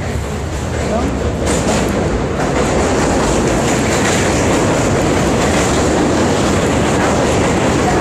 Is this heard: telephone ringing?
no